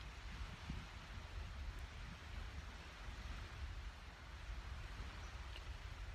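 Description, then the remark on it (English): A steady, unbroken wash of ocean surf blends with rustling tree leaves outdoors on a nice day, a soft continuous hiss with low rumbling underneath and no voices. “Do some earthing, breathing in the fresh ocean air, listening to the sounds of the waves, and now the waves being mirrored off the leaves of the trees.”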